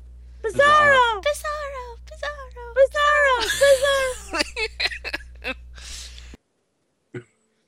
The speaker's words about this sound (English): And there was my coughing fit for the night.